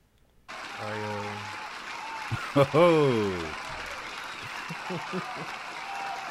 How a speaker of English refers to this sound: Okay. Cool, man. I think it's time for a round of applause, man.